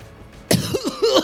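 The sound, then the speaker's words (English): After a brief hush, a sudden harsh cough bursts out, followed by strained, gasping splutters of someone choking and coughing up salt water after being washed back onto a ship's deck. “Salt water coughing out of one of their mouths.”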